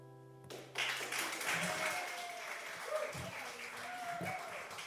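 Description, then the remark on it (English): A lingering musical note from a live song performance cuts off, then an audience bursts into loud, steady applause that keeps going, dense and crackling, with a few faint cheering voices mixed in. “Keep it going”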